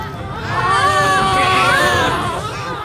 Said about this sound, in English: It's always hard to hear a baby cry. In Al-Shifa, there were more than 30 premature newborns clustered together, many now orphans, all of them pulled from their incubators after fuel to keep them going ran out.